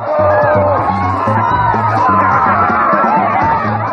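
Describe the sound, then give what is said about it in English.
A loud, continuous crowd cheers and whoops at a tug of war, with a daughter cheering on her father's team. Many overlapping voices rise and fall, with a steady rhythmic low thumping pattern running underneath throughout. “On the other side of this tug of war here, the Hawker himself is heading up a team where his daughter is cheering him on.”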